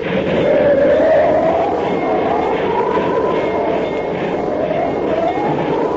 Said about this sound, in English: Precisely speaking, in the Wasatch Mountains, advancing by train toward the perilous pass at Medicine Bow. To thicken the plot a bit for you, if possible, it's coming up for a blizzard.